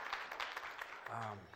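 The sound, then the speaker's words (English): A church audience applauds the Lord during a morning service in a dense, steady wash of overlapping claps, and near the end a single voice calls out over the fading clapping. “Can we just give the Lord a clap offering this morning for what he's doing in this place?”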